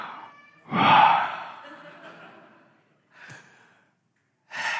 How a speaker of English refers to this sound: So I'm like over here practicing deep breathing before I get up here and speak. And I think I might have had my mic on